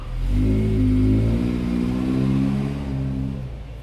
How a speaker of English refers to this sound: Thank you, mail truck, for the interruption.